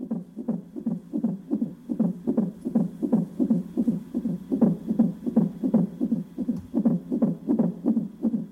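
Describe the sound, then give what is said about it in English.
A fast, steady fetal heartbeat of John Hull's unborn first child on a heart monitor in a maternity hospital as his wife is about to give birth, rhythmic whooshing thumps about two or three per second, loud and continuous with a muffled, watery quality and no voices. “John Hull's first memory of blindness is the sound of his unborn baby's heart beating on a heart monitor.”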